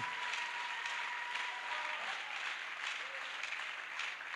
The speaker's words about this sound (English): We give God the glory. I want us to give a mighty clap to the Lord Jesus for that.